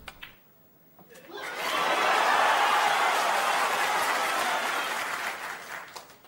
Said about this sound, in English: Then the pink, 140 points. And now he's on the black. And the crowd are going mad. Snooker mad. Snooker mad.